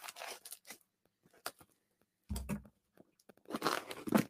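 Packing tape being ripped off a cardboard box in several short, scratchy tearing bursts, with a dull thump midway and a longer, louder rip near the end, with no talking.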